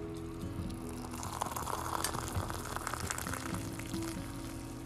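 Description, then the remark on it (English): A kettle of water heating to a boil in the morning for a cup of Nescafe coffee, a steady rushing, bubbling roar with faint crackles, continuous throughout, with no one speaking. “This is what we wait to wake up to every single morning, brewing my hot water for my delicious, delectable cup of Nescafe.”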